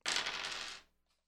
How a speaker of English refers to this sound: I get to roll two. Two yeah, dice, right. Two D8. Two D8s. Or just the same D8 twice. Either way.